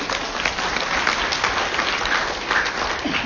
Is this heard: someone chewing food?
no